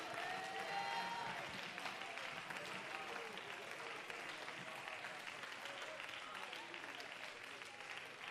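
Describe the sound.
An audience claps their hands in the evening in steady, dense applause that holds at an even loudness throughout, with a few voices calling out and brief whistling tones rising above the clapping near the start.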